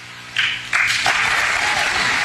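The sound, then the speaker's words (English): Audience applause swells quickly into a dense, steady wash of many hands clapping, loud and sustained with no voices on top. “People are clapping about that.”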